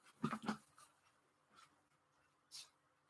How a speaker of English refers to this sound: I was just checking my dog there. She's fine. She's just was snoring.